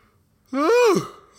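A single voiced yawn, about half a second long, with a drawn-out tone that rises and then falls before trailing off into quiet.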